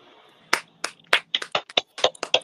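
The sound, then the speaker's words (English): A quick, uneven patter of hands clapping, about a dozen sharp claps in a row, clear with a faint background hum and no talking. “Sorry, I wasn't clapping because I was holding this dog.”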